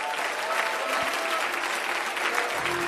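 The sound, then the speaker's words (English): An audience at First Pentecostal Church in Palm Bay applauds steadily during a morning service, clapping their hands to Jesus Christ, a dense wash of many hands clapping at a loud, even level for the whole stretch, with no voices standing out. “Let's clap our hands to Jesus Christ this morning.”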